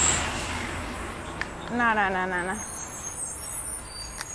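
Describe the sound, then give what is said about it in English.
A garbage truck rumbles by and turns, with a hiss of air brakes near the start, while a voice briefly speaks over the steady road noise. “Today's all the garbage trucks. I think it's like recycling day.”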